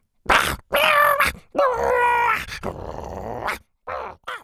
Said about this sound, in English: Before she could finish, all three of the Triceratopses locked horns and started growling.